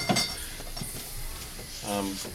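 A sharp glassy clink, then scattered lighter knocks and rustling as beer bottles are taken out, with a brief voice murmur near the end.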